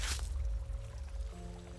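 sound effect, water poured

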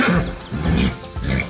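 animal, horse neighing

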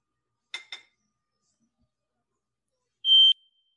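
household object, smoke alarm beeping

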